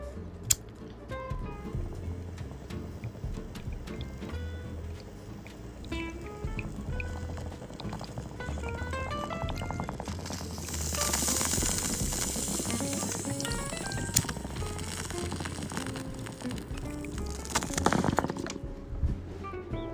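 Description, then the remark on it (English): Steady gurgling of water bubbling through a bong as a cone is smoked, with a sharp lighter click near the start and bursts of hissing flame and airy inhalation later on; no one speaks. “Well, I'll wait for you to pack your cone.”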